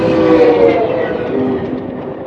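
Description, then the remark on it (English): Amtrak's Sunset Limited passenger train rolls along the Union Pacific main line, a loud, steady rumble with harmonic tones sustained throughout, no voices present. “I left California 1 week later on Amtrak's Sunset Limited. This train follows the Union Pacific's main line through Southern California, Arizona, New Mexico, and Texas.”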